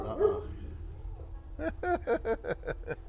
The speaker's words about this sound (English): Can I get irritated? My neighbor is enticing my dog to bark.